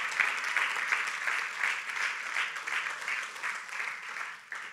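An audience claps for Jesus steadily for the whole stretch, a dense, even wash of many hands with a slight pulsing rhythm, easing off a little at the end.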